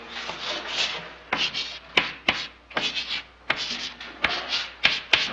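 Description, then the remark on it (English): Chalk or marker scraping across a board in quick, uneven strokes as the word "Jesses" is written up in a class, with sharp taps as it lands and lifts between letters, steady and fairly clear with no talking. “Come on, you're going to show us on the board.”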